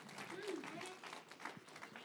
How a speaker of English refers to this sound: Clap your hands to Christ Jesus. Praise the name of Christ.